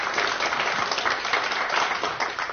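A panel event's audience gives a round of applause for a panelist from Vodacom as she is introduced: a steady, dense wash of many hands clapping at once, sustained at an even level throughout with no voices standing out.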